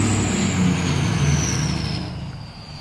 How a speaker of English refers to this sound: Wait a second. Car going by.